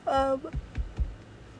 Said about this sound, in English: Sorry, I need a yawn.